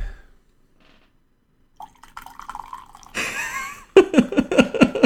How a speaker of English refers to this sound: Pour myself a little more tea.